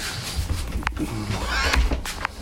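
A man breathes heavily, with rough, raspy breaths rising and falling, each with a low, growling rumble underneath. The breathing is fairly loud and steady, with no talking.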